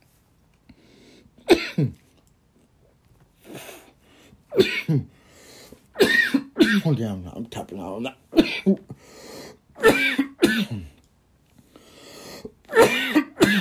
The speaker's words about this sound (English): Oh. Ooh, there's a cough.